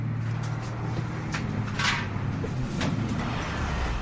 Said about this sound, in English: The man was now smiling, ear to ear. The bus door opened, and he quickly hopped in.